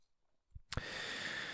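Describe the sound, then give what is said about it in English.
A breathy yawn at 9:40 at night: a soft thump and a quick click, then a long, steady airy exhale that carries on to the end. No one speaks. “I'm yawning like a little fucking, I don't know why I'm yawning.”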